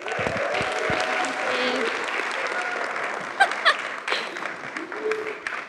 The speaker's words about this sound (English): So I think a round of applause is in order.